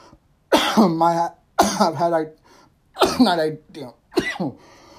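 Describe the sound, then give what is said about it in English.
A person coughs hard four times in a row, loud, each bout a harsh, raspy, voiced hack with short pauses between, then a faint breathy exhale at the end, after smoking a blunt. “got a cough to get off, you know what I mean?”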